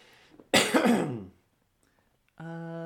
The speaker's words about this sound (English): Cough, cough, cough.